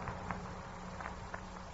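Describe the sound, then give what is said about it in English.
A few soft, hesitant footsteps spaced unevenly at night, faint, with a low background hum and a light rustling at a dresser across the room between the steps. “A hesitant little footstep. And a rustling at the dresser across the room from me.”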